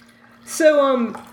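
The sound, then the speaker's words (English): A short splash of liquor poured into a glass, a brief hiss followed by a ringing, tonal gurgle lasting about half a second, fairly loud, with a low steady hum underneath. “You should pre-pour your liquor like I do.”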